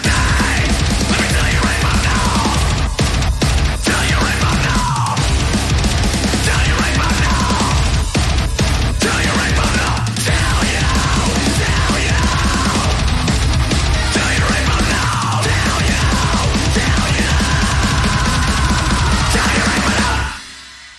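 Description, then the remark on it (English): Loud, dense heavy metal music plays continuously with pounding drums, distorted guitars and harsh screaming vocal lines, performed by a band from Chicago, then cuts off abruptly near the end. “That is such a great track.”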